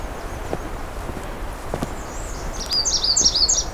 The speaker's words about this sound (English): It's amazing the sheer numbers of Red Start in here.